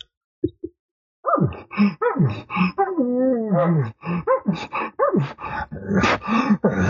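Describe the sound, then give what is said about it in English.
While raking, a person vocally imitates a bull showing excitement: two quick huffs, then a drawn-out huffing groan sliding downward, followed by a run of rapid, breathy excited pants, all fairly loud. “So as I start raking and I give a few of those pants, and I'll even give what's called like a huffing groan where the bull's showing excitement, you're going to see his emotion in this.”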